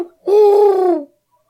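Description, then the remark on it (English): A person imitates an owl with one long, loud hooting call, held steady for under a second and dipping slightly in pitch as it fades. “Sort of like that, like, but it's an owl.”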